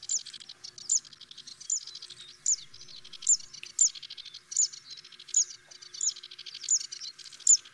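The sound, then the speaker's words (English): A Zitting Cisticola (Cisticola juncidis), a small grassland warbler, repeats a sharp, high "zit" note roughly twice a second in a steady, metronomic series, clear, with no other sounds around it. “And the bird is Zitting Sisticola.”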